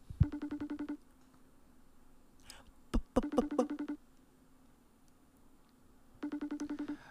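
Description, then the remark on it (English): A phone call is dialed and rings in three short warbling bursts, each a rapid trill of electronic pulses, with a few sharp clicks and beeps of dialing between the first two rings. No one speaks, and the person called does not answer. “Yeah, let's get on the phone here. I'm trying. Hang on, he's not going to answer that one. Let me go again.”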